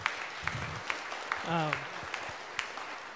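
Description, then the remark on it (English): A crowd claps steadily in dense, continuous applause, with a few voices calling out briefly over it and occasional sharper claps standing out. “So let's applause.”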